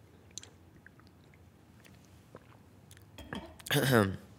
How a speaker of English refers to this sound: Honestly, let me take a sip. Hold on.